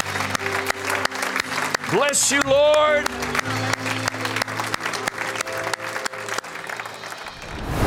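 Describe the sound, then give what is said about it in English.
A crowd claps steadily and enthusiastically for several seconds, a dense wash of hand claps, while a voice briefly calls out over the applause; the audience gives a hand clap of praise to Jesus. “If you believe Jesus is Lord, would you give Him a hand clap of praise and declare it?”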